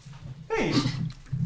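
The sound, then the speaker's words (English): Dogs playing and opening a bag of chips, with one short, breathy huff or snort rising over a steady low background hum, then a brief quiet before a sharp knock at the end. “We got dogs. We've got a dogging around.”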